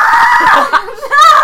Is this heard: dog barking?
no